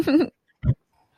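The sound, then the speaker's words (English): A puppy kept outside whines at a glass door, asking to come in: one short, wavering high-pitched cry followed after a brief pause by a lower, grunting yelp, then quiet. “She's hiding in a corner and then occasionally running to the glass door and asking to come in”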